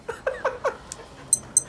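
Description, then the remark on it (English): A few short, high-pitched electronic beeps from a small Casio digital wristwatch chirp at uneven intervals, following a burst of laughter-like vocal sounds at the start; the beeps are thin and fairly quiet. “I just realized my little Casio watch is beeping like a motherfucker.”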